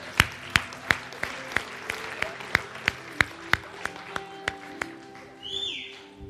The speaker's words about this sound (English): Let's give our moms a big round of applause as they come this morning.